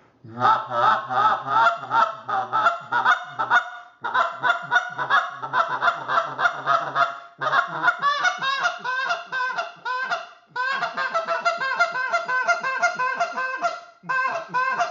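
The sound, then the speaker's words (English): A goose call blown in rapid, loud sequences of honking notes, drawn-out moans breaking into quick clipped hiccup notes used as the finishing note, with brief pauses between bursts and no talking. “Then I'll do what I call a little hiccup, and then a lot of times that's that fishing, the finishing note that's going to put them in your bootstrap.”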